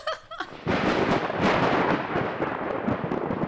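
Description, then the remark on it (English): A loud crash of thunder bursts in after a brief quiet moment, then rolls on as a dense, rumbling roar that stays heavy and sustained to the end, with no voices. “What should our listeners listen to while we go get beer refills? A thunder crash.”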